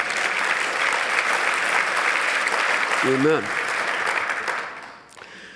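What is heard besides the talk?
audience clapping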